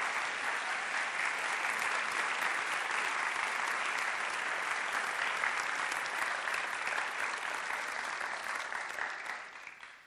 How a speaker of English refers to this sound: Can we just give them a round of applause because they're putting themselves up for that?